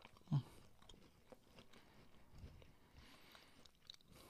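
Chewing of a crunchy, dry milk chocolate chip cookie, opening with one sharp bite and continuing as soft, irregular crunching and munching at low volume, with no talking.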